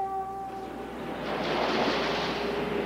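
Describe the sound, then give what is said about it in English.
Broad, steady wash of ocean waves surging around a research ship that sails the oceans taking samples of seabed sediments, swelling louder midway, with a faint sustained tonal hum fading out early on; no voices. “The research ship Vima sails the world's oceans, taking samples of sediments deposited long ago.”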